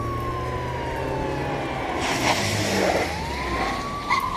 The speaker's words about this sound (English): We got half the police department. Shut up. And you hear the sirens get closer and then suddenly stop.